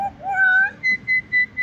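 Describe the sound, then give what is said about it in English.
A bird's clear, whistled call from a Bali myna, a white myna with black wing tips found on the Indonesian island of Bali: a rising and falling tonal phrase, then four short, evenly spaced high notes repeated in a steady rhythm. “There is something special about Myna birds, which are found on the Indonesian island of Bali, 巴厘岛.”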